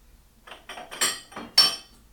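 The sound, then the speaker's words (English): Rosé-colored wine glugs into a wine glass in a short series of splashy bursts, with a couple of sharper glassy clinks. No one speaks. “Man, I want to pour this in a wine glass to really open up the nose.”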